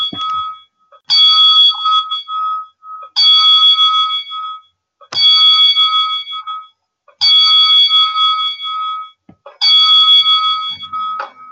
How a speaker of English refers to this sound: Here we go. The 10 bell salute for Road Warrior Animal. One more time. Okay.